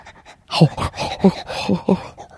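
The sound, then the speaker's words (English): A male dog pants in quick, breathy bursts, about five or six rhythmic huffs with a slight throaty, voiced edge, with no talking over it. “Now we'll get a growl.”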